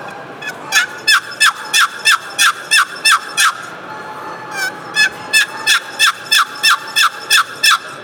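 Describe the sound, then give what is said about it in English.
A turkey box call made of purple heart wood with a cherry box yelps loudly in two rhythmic runs, about eight sharp raspy notes each, separated by a brief pause. Each yelp is bright and scratchy, with nobody talking. “And this is where is my go-to call on those windy days. You can get that loud yelp out of it.”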